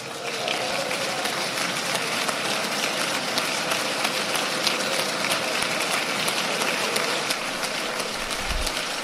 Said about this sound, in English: That gets sustained applause.